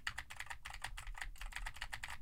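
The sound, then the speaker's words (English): Fast, steady typing on a mechanical keyboard with Cherry MX Blue switches, each keystroke a sharp, bright click in a quick irregular rhythm, fairly loud with no voices. “And now I am typing into the older SM7 while typing on a keyboard with Cherry MX Blues.”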